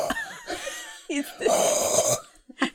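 Loud breathing drawn through the mouth while tasting wine: a harsh, airy rush lasting nearly a second, surrounded by short vocal noises and a quick exhale at the end.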